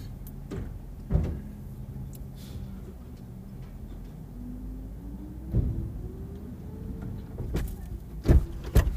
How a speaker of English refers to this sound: Hey guys. Sorry, I slammed into the door.